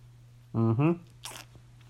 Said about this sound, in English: Maybe I should have a sip of my Christmassy drink here. I hope this is not too loud. It's really up close to my face.